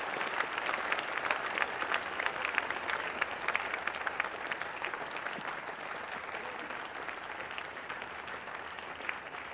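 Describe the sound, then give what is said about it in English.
Steady, dense applause from an audience in a church, many hands clapping at once in a continuous wash of sharp claps that holds at an even loudness for the whole stretch, with no voices standing out. “I'm not sure if you are clapping, but if you are clapping, please do better.”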